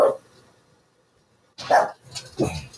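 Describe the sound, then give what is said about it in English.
A small pug dog named Olivia Benson barks: one sharp yap at the start, a pause of quiet, then a quick burst of several more barks in a row. “Sorry, yeah, no, that's Olivia Benson, the pug, my little dog.”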